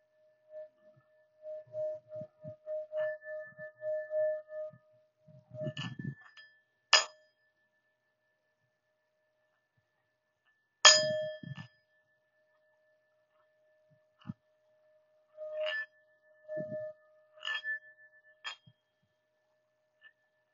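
A singing bowl rings with a steady, pure mid-pitched hum and a higher overtone, struck sharply twice so the tone blooms again, with soft low thumps and rubbing between.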